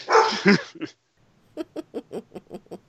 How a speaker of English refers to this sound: I know she hissed at you. Doesn't mean you got to bark back. She's going to learn someday. Anyway, Stop barking at the cat. She'll only hiss more.